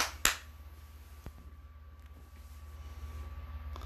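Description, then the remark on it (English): One sharp, loud clap rings out near the start, followed by a much fainter click a second later, with a steady low hum running underneath and no talking. “Ladies and gentlemen, claps on that one.”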